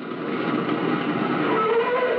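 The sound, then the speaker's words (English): A motorist's car brakes hard to a stop on a public highway for a young man caught in its headlights, with a steady rumble of road noise and a faint rising squeal of brakes toward the end. Loud, no voices. “Quickly, he brakes to a stop.”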